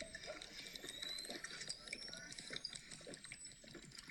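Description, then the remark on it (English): Someone takes a sip of a drink: soft, faint wet slurping and liquid trickling sounds over a few seconds, with no talking. “Let me take a sip right here.”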